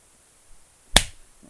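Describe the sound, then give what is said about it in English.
A single sharp, crisp hand clap, clapped to demonstrate a pace, rings out on its own, a bright percussive crack that quickly fades, with only faint low rustling afterward and no voices. “Can you like kind of like clap out your pace right now, like the yeah okay well or like.”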